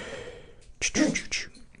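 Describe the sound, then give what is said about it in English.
A single sneeze: a short intake of breath, then a sharp, noisy burst that trails off quickly, with no speech. “Bless you”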